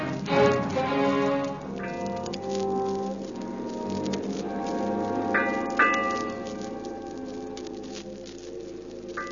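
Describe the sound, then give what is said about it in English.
A ship's bell strikes eight bells, a series of clear metallic chimes, the tones ringing and overlapping as they fade, with a soft patter like rain underneath and no one speaking. “Eight bells.”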